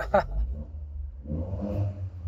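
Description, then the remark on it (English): The real engine of a small turbocharged car idles with a deep, steady rumble while warming up, then revs up briefly, its tone climbing and growling louder before settling back. “That's the actual engine.”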